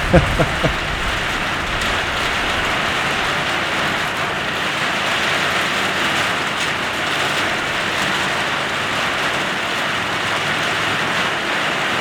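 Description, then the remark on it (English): A heavy downpour drums steadily and loudly for the whole stretch, a dense, unbroken hiss of rain pelting a nearby surface, with a couple of sharper knocks at the very start. “Okay, well, let's pause for a second here and we'll see if this blows over. Is it gonna hail?”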